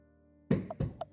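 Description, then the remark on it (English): Two heavy knocks thud against the wooden door of a woman's room, each followed by a brief sharper rap, with quiet around them and no voices. “Can I knock?”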